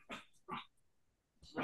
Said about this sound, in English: It's kind of weird to hear a dog and it wasn't yours.